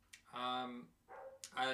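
Dogs bark twice in quick succession, each a sharp onset followed by a drawn-out, tonal bark, with no one talking over them.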